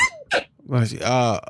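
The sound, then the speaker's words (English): A quick, sharp sneeze, with a short breathy burst leading into a louder voiced sneeze. “Bless you.”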